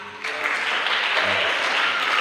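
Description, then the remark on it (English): An audience at a church worship time breaks into steady applause, a dense, even wash of many hands clapping that starts abruptly and holds at a consistent loudness without voices standing out. “The sound is, clap for the sound.”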